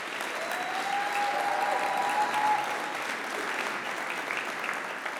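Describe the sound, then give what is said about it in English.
An audience at an industry presentation claps steadily for about five seconds for the Common SKU team, a dense, even wash of applause at moderate loudness with a faint whistle-like tone briefly rising above it. “So let's give a round of applause to these guys.”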